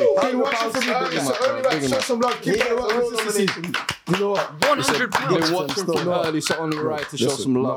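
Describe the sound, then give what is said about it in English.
Hands clap rapidly and steadily for several seconds in a fairly loud round of applause, while voices talk and call out over the applause. “Round of applause.”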